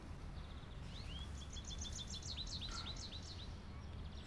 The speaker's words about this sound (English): Oh, check it out. There is an American goldfinch right there. You see it? What? An American goldfinch, the bird. Look, right there. Look at that tree. I bet you he flies by again. It's black and yellow. That's how you know it's a male.